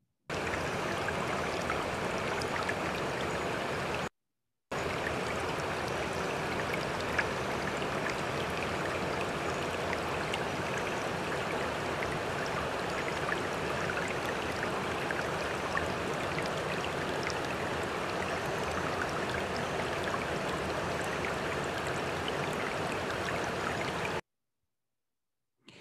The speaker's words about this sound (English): Yet it reflects back at you and it trickles down your fingers like the lightest thing in the world till you see a hurricane or a tsunami or a flood. Water.